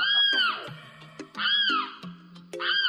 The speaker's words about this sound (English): This week's featured feathered friend is a big tropical wading bird with a long neck, brownish plumage with white spotting, a heavy yellowish bill, and a piercing scream.